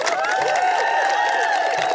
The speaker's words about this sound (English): Yeah, you hear all the suburban moms clapping.